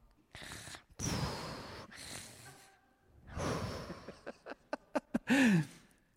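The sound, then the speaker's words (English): A voice imitates snoring: several long, rough breathy snores, then a quick run of short sniffs and a final nasal, rising snort, fairly loud with no speech. “Can you give us a little snore?”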